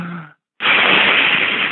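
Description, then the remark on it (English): A brief hummed vocal sound, a short pause, then a long, loud, steady breathy exhalation hissing out for over a second, an extended out breath as in a breathing exercise. “That's the out breath.”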